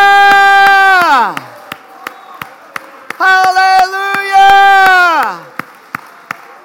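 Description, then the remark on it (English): An audience at a church service claps hands in a steady, even rhythm as a hand clap of praise to the Lord, while loud, sustained shouts of praise rise twice over the beat, each one sliding downward in pitch as it fades. “Come on, just shout out his praises. Come on, give him a hand clap of praise.”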